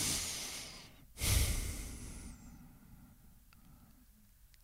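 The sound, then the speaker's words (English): A slow, deep breath drawn in as a breathing exercise to cleanse the mind, a brief pause, then a long airy exhale that fades gradually into quiet. No one speaks. “Now, an effective trick to cleanse the mind is through breathing.”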